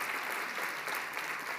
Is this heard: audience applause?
yes